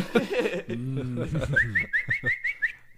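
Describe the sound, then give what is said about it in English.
Someone talks briefly, then whistles a quick run of about seven short, rising chirps in a steady rhythm, a playful human imitation of Yondu's little arrow whistle. “I'd like to see Yondu use his little arrow whistle to just knock the Infinity Stones off Thanos' gauntlet.”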